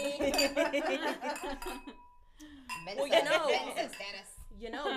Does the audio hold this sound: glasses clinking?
yes